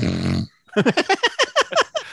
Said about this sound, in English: He gets the snore. That's fine. It was a great snore.